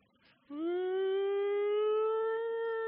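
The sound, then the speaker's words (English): A siren starts abruptly after a moment of quiet and holds a loud, steady wail, its pitch creeping slowly upward and sustained to the end with rich harmonics. “There's just sirens going off in the background.”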